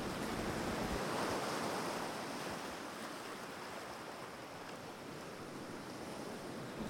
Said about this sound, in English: as they watched the waves roll in and out slowly.